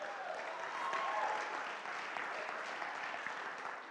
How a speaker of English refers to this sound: But we're clapping because we're in it together. We're in it together.